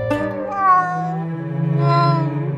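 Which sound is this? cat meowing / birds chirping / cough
cat meowing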